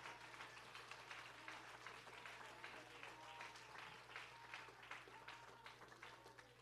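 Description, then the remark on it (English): An audience claps together in sustained, dense applause as praise to the Lord during a morning church service, with scattered voices calling out, the hands filling the room steadily over a low electrical hum. “Can we give the Lord a hand clap of praise?”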